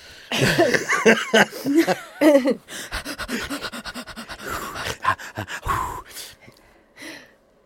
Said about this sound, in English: She's heavy breathing.